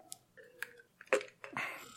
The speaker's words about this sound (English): Another drink of water.